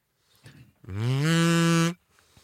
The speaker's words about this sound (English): I forgot, you don't just blow into a kazoo, you have to hum. Let me try this sucker out.